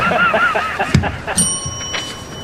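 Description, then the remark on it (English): A single bright ding from a Coke desk bell struck once, its clear metallic tone ringing out and slowly fading, following a brief muffled knock and some faint vocal sounds in the background. “You want me to ring it?”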